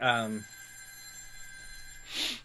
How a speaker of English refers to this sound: There's nothing I can do about that ringing, so you just have to suck it up. I don't even know if that picks up at all or not. You hear the phone ringing?